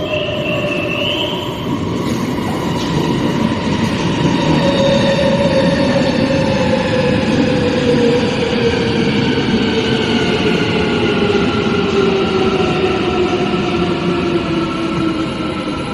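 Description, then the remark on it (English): A train pulls in to a station platform with a steady, loud rumble, its motor whine sliding slowly downward as it slows. The noise fills the whole stretch, with no voices. “She will wait until the push of air from the approaching train gently lifts her hair from her now awakened expression.”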